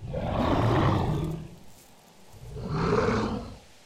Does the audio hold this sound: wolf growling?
yes